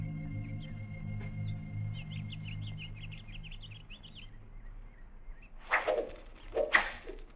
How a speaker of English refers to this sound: Hold your fire, men. Arrows. They're shooting arrows. What'd you expect? They're Indians.